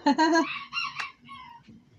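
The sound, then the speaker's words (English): A hen clucks loudly in a quick run of squawking calls, followed by a few softer, drawn-out clucks as the sounds trail off. “Parece you que like la gallina quiere el rojo.”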